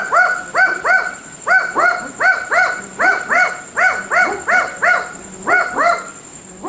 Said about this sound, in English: Liz sent in the barking owl from Larrakia country, Darwin.